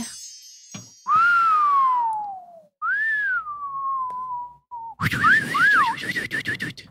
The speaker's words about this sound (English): So, who do you think, who's the better whistler? All right, let's do it. Let's do a little whistle competition.